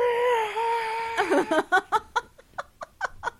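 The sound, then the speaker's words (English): The Howie Scream, a stock movie scream: a sustained, wavering high-pitched wail lasting about a second, breaking into a rapid series of sharp, rhythmic sobbing or gasping bursts that gradually space out. “But that's where the Wilhelm Scream comes from. But the Howie Scream comes from this.”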